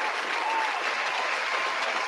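A crowd claps steadily in a dense, sustained round of applause, with many hands blending into a bright, even wash of sound that holds at a constant level throughout.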